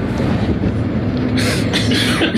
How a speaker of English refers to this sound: I just... Can you do one more of those so I can cough?